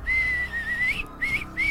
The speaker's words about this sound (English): Yeah, let me do a quick whistle real quick.